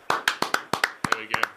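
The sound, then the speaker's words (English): A short burst of applause from a small group of hosts applauding winemaker Michael Dillon of Bindi in Macedon, crowned winemaker of the year by James Halliday; about a dozen sharp hand claps in a quick, slightly uneven rhythm, with no talking. “We are applauding.”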